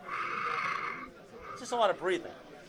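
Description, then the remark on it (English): Loud, heavy breathing from someone asleep at night: a long raspy inhale followed by two wavering, snorting exhalations with a strained, almost whinnying tone. “So … was making all these crazy noises last night. Listen, here it is.”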